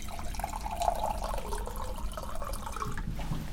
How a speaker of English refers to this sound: A water cooler. Yes. Do you have any cups? Yes, I do. You can use my cup. And we'll get you some water.